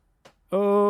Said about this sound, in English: I just realized I'm sitting on the creaky chair. Oh no, there's going to be some creaks. It's too late. I'm not going to go and change it now. Are those creaks as creaky as the plot of Jupiter Ascending?